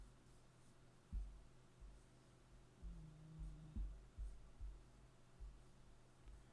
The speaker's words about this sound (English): Or it could be who I'm writing down right now.